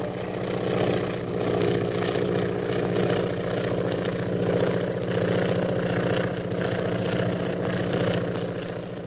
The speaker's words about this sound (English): There's a plane following us. Another plane? Has it got a purple triangle on it? Yes. By Jove, there's one on each wing.